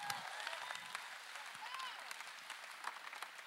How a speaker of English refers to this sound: Give the Lord a clap and a shout up in here if you feel this. Hey, come on.